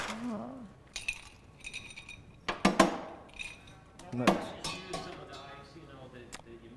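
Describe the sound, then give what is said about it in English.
Ice cubes clatter into a cocktail glass as it is iced for a drink, in a few sharp clinks, bunched in two quick bursts with lighter taps between, and a brief murmur of voice near the start. “We're going to get our glass, ice it.”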